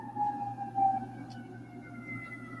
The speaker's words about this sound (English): Every day in this car, always siren, siren. Most of the times when I'm doing videos, that siren is always blowing.